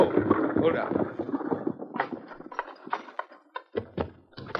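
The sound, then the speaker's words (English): Horse hooves clop along with a rumbling, rattling undertone as a horse-drawn rig is driven to a doctor's house with a second horse tied behind, then the steps thin out into a few separate, uneven knocks as the rig slows and comes to a stop. “the blacksmith asked me to drive the rig to Dr. Jenkins' house. I tied Victor behind the rig and drove it over.”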